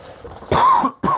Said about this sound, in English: And so let me use my notes and let me have my a real quick cough here.